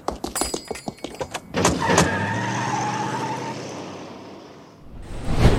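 A quick series of sharp clicks gives way to a car engine revving up and driving steadily, fading slightly before a brief loud burst at the end.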